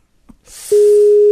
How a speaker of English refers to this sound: Oh, that's annoying. Does that get recorded, that beep? Yeah, that gets recorded. Nice. All the sound gets recorded. The beep.